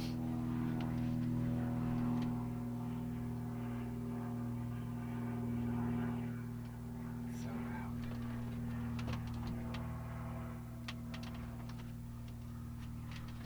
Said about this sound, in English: Yeah, just a plane pulling the glider. Is it landing? Or no, flying around? It's flying around, so we might hear it again.